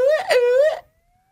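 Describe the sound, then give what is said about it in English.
A short alarm siren sound effect: a loud, buzzy wailing tone that wavers up and down in pitch for under a second, then cuts off into silence, with no talking. “Well, I think it's time to sound the alarm.”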